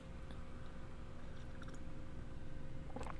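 sipping coffee

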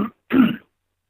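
cough and throat clearing

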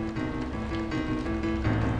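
rainstorm

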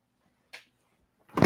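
refrigerator door opening

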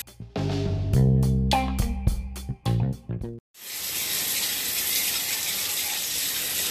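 shower water running

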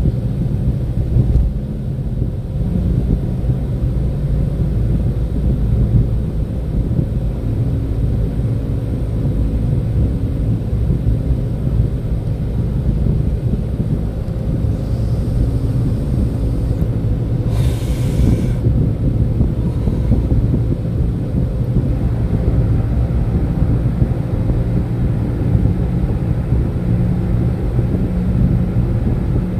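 road traffic noise

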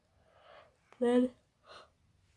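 yawning

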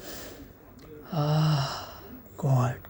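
person yawning

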